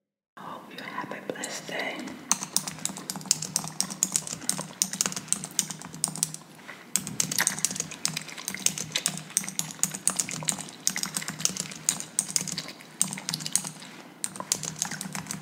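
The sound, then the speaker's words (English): Rapid, steady clacking of keys on a computer keyboard, continuous, with a soft whispery hiss running underneath and a brief pause about midway through, from the ASMR channel The Chew. “Even if you haven't heard this video, you've probably seen this person on Twitter typing on a keyboard and chewing gum.”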